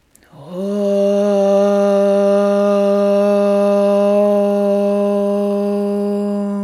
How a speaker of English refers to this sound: Exhale through your nose, just clearing some space. And then we'll inhale for the sound of Om one time.